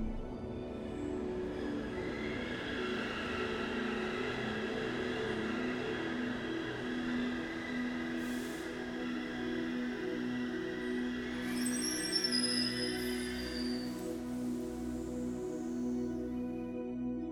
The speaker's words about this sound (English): Let the rhythmic rocking of the train soothe and relax your body.